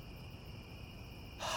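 Night crickets in trees chirp in a steady, high-pitched, continuous trill over a low background hum, quiet, cut off at the end by a brief burst of noise.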